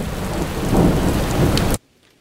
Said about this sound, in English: One minute it's pouring, and then it changes to a drizzle